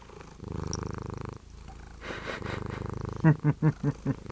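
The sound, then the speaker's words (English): A female calico cat purrs in a steady, low rumbling rhythm, the purr swelling into several louder pulsing bursts toward the end, with no voices over it. “I can hear you purring.”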